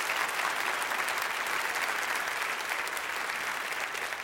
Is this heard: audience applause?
yes